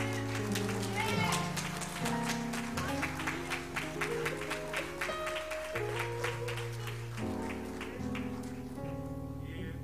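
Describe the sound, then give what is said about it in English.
A crowd claps hands steadily and loudly in praise as Pastor Moore is welcomed, the dense clapping continuing throughout over sustained organ chords. “Let's give a hand clap of praise as we welcome Pastor Moore, who says, "I truly believe it takes a village to raise a child."”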